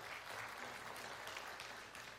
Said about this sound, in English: Will you clap if you think you are a people pleaser? Clap if you know of someone that is a people pleaser.